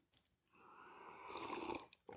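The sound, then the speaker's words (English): A drawn-out slurping sip of Freedom Hill Coffee that builds in loudness for over a second, framed by soft lip and mouth clicks before and after. No one speaks. “It's going to be a sip of our preferred beverage.”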